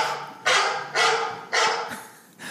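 A dog barks four times in a steady rhythm, each bark sharp and loud, with brief quiet gaps between them and no talking.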